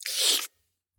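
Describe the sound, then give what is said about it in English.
A brief wet slurping noise of someone slurping on a dead body, a hissy, crackly burst of mouth sounds lasting about half a second before cutting off into silence. “Stop slurping the dead.”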